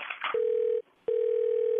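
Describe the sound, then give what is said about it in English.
A short clattery handset noise, then a steady electronic telephone tone that stops briefly and comes back, like a line dialing out and ringing as a man phones his wife. Clear, with no voices. “We get her on the phone right now.”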